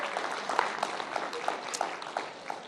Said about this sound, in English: And so thanks for being an incredible church family, everybody. Give your neighbor a big round of applause. Yeah.